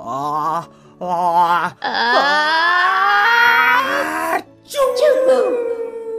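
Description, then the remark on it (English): A voice performs an exaggerated last, big sneeze: two short wavering 'ah' breaths, then a long, strained, rising wail that breaks into a sharp burst and a trailing vocal flourish. “I've got one last sneeze for you”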